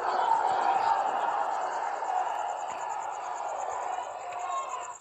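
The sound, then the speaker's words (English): A large crowd booing and chanting "Trump, Trump, Trump", a dense, steady roar of many voices filling the whole stretch and holding loud until it cuts off at the end. “The crowd boos him and says, Trump, Trump, Trump.”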